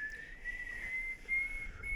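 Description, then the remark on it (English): A person whistles a steady, high, slightly wavering tone, held in a few long stretches with brief breaks, fairly quiet, over faint low background noise. “Okay, but I was thinking about, like, who do you think the first person to whistle was?”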